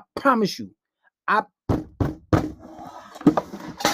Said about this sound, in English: Oh, damn. I knocked over the phone.